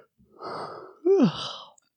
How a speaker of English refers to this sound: See him yawning.